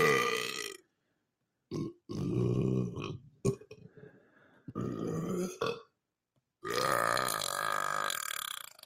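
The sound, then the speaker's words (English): A series of loud, drawn-out burps in several bursts, each with a harsh, rumbling tone, with short pauses between them and a long final belch. “I wonder though, like if that burp had happened, like say in a child's face or a baby's face, would it have been as funny?”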